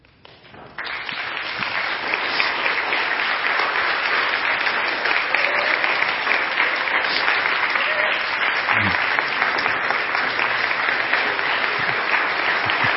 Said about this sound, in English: I'll clap for you guys. We did this together.